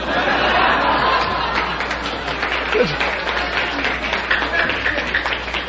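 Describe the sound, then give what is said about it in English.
A crowd applauds steadily and loudly, a dense wash of many hands clapping at once for several seconds, with some faint murmuring and chuckles mixed in. “And so, as we all applaud Puritanism, like good Americans,”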